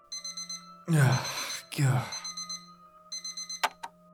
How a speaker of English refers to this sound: The moment I took her hand, the dream ended, and I woke up to the blare of my alarm.